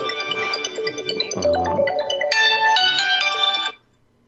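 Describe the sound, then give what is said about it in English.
A mobile phone ringtone for an incoming call plays a bright, melodic electronic tune for a few seconds, loud, with stepping notes and a lower bass passage midway before it cuts off abruptly into silence. “Is that your phone? That was. It was my mother-in-law calling me.”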